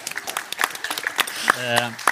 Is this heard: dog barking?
no